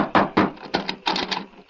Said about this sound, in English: knocked at the front door of the Anderson Ranch House.